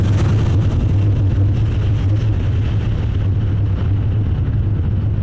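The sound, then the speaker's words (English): A jetpack roars continuously for several seconds, a loud, steady rushing thrust over a deep low hum, with no voices and no letup from start to finish. “So that's a jetpack.”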